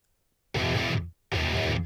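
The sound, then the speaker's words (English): Two loud, sustained blasts of heavily distorted electric guitar played through a distortion pedal, each ringing about half a second with a brief silent gap between them, gritty, with no talking. “Well, you need a distortion pedal.”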